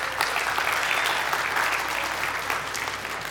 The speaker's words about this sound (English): A big round of applause to the children for flowering the cross.